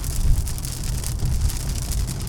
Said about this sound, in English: Oh, hear that rain pelting down. Hope this doesn't last all day.